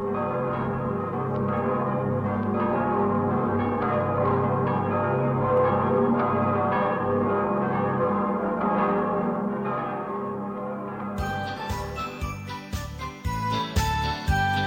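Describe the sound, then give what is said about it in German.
Heavy bells of the Imperial Cathedral in Aachen ring continuously in loud, overlapping peals that hum and resonate, shifting near the end to a brighter, clanging jangle of tones. No one speaks. “läuten die Glocken des Kaiserdoms zu Aachen.”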